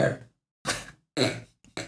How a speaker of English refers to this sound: Is that a yes? Yarr. Confirmation burp?